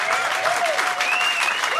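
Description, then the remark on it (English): Loud, sustained applause from a live audience for comedians Luke Heggie and Nick Cody at the end of a live show. It fills the whole stretch as a dense wash of clapping, with a few faint whistles or cheers rising above it. “Please, one more time, big round of applause for Luke Heggie.”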